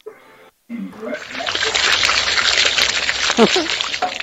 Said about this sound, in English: In order for your crops to grow, you need to water them every day. To water your crops, just say water my crops. Water my crops.